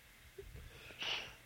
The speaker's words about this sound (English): Sneeze on the podcast.